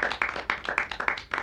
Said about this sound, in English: Let's get a round of applause for water. H2O, baby.